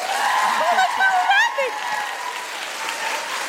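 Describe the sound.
An audience claps steadily, a dense wash of many hands, with a few voices and whoops rising briefly above the applause before it eases slightly toward the end.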